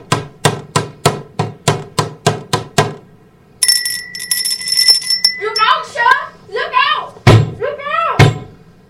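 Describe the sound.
A doorbell rings with a bright, sustained metallic buzz for over a second, right after a steady run of about ten sharp knocks. Voices follow, talking.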